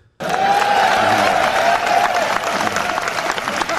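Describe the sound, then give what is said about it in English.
A large crowd roars and cheers loudly and steadily after a speech by Ronald Reagan, with a wash of clapping and a sustained high yell riding over the noise until the end. “The cheers come after this.”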